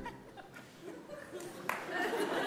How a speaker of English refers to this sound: Thanks for that one clap, everyone.